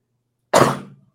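A single loud sneeze from a person suffering allergies bursts out abruptly after a brief silence, a sharp explosive blast that trails off quickly into quiet.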